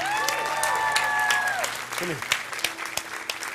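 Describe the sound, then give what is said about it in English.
A crowd breaks into applause with dense, irregular clapping, while voices whoop and cheer above it, a few rising and falling shouts standing out early before the clapping carries on; they are cheering for a man who raised his hand. “How many of you want to cheer for this guy?”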